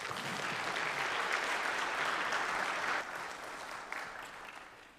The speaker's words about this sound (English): So please give him a round of applause.